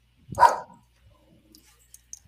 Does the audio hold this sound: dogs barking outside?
yes